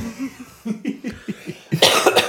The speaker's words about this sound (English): I've also had to cough for like 7 minutes, and I hope you can edit that out.